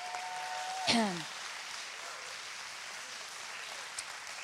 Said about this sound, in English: And everybody give the Lord a hand clap.